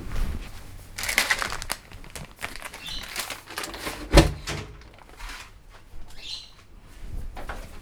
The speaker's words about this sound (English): Can you please bring the bird in? It's annoying the heck out of me.